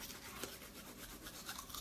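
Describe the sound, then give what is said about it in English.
Steady scrubbing of a toothbrush with tooth powder against teeth, a continuous wet bristly rasp with quick back-and-forth strokes and no talking. “I could brush my teeth if you guys want and I can show you.”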